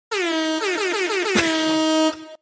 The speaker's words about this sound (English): This is where you need air horns